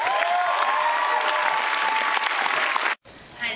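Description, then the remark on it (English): A large crowd applauds loudly and steadily, a dense wash of clapping for about three seconds before it cuts off abruptly, followed by a brief quieter burst of noise. “just odd that you're into it, you're working every day, you're doing what you're doing, and then all of a sudden we come out and there's this gigantic crowd of people here that hopefully appreciate what you do.”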